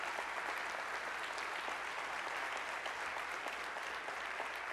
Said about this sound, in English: Now give the Lord a hand clap.